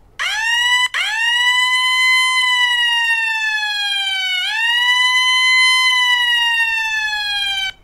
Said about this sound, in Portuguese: O aplicativo monitora a localização do voluntário e quando há uma chamada na região, sempre pertinho, duas ou três quadras de distância, essa sirene toca no celular.